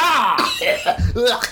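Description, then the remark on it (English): A raspy cough with a strained, throaty quality from something stuck in the throat, breaking into a couple of rough bursts over about a second and a half, heard alone without talking. “coughing podcast”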